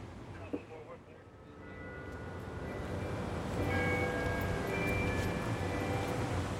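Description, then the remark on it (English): Bells strike the hour of 6 p.m., ringing out with sustained, overlapping tones that swell and linger over a steady wash of background noise. “The bells strike 6 p.m.”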